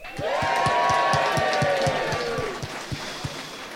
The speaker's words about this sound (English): is going through to the quarterfinals, scream and shout!